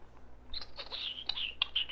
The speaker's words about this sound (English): Like chirping, like almost like a cricket doing the violin thing with its legs.